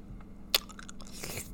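A brief slurp of a blue raspberry drink, preceded by a sharp crunchy click, with wet sipping noises near the end and no talking.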